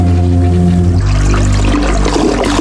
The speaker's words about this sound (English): Toilets, all right? It's a little flushy. This is long, this eh? This is a long toilet.